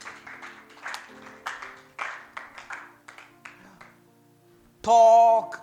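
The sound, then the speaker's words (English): An audience claps in uneven bursts for about four seconds over a low sustained tone, then the clapping fades and a loud, harmonically rich blast of sound cuts in at the end. “It's a good thing to clap.”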